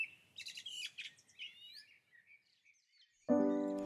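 Swallows and house martins twitter in quick, high chirps and warbling calls for about three seconds as they fly under a grey sky, followed by a sudden sustained tonal note at the end.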